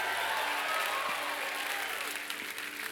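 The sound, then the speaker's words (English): An audience bursts into sustained clapping and cheering for the Lord, a dense wash of many hands and raised voices holding steady and loud throughout with no single speaker standing out. “Somebody give the Lord a clap and a shout.”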